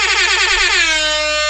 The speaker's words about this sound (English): Hit me with a horn.